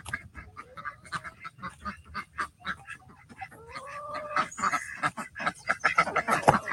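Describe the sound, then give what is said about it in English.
A flock of backyard birds calls noisily in the morning as they are let out, overlapping squawks and honking cries coming in quick, uneven bursts that grow denser and louder toward the end. “We're a little late today, so they're kind of mad, but that's okay. Good morning, birds.”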